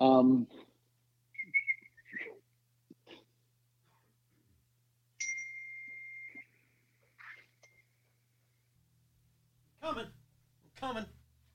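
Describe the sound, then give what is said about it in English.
Someone tries unsuccessfully to whistle, producing a few breathy puffs and thin, wavering tones, with one briefer steady note, broken up by bursts of air and short vocal noises. “I tried to whistle, but it wasn't successful.”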